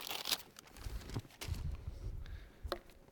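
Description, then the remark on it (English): Soft rustling and rubbing of fabric in a few brief bursts with quieter scuffing between them, as hands are wiped with a cloth rag. “So I'm using a rag instead.”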